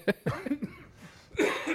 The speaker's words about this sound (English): Maybe you'll get rid of that cough. Right. This cough has been. I'm on like the start of week 3. Yep. Of this cough, like all the other symptoms are gone. It's just like a desert in the back of my throat.